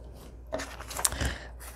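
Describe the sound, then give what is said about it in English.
A few quick snips of scissors cutting through paper, fairly quiet, clustered together over about a second with no one talking. “Just works a little better with the scissors.”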